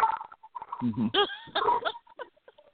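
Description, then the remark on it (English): A dog in a house in New Orleans barks excitedly, set off by hearing the word "gun", in a quick, irregular burst of several loud yelps, tapering into softer whines and short yips, with faint human voices in the background. “My dog is freaking out all of a sudden.”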